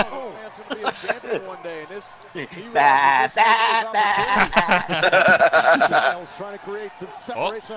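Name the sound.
goat bleat sound effect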